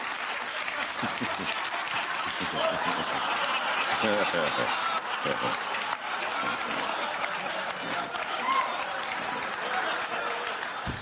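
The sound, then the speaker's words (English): An audience breaks into sustained applause, a dense, steady wash of clapping lasting several seconds at an even loudness, with faint voices and a few chuckles mixed in. “Really, why is that synonymous with applause?”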